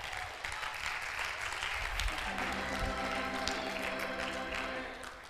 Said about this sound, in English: No, come on and clap.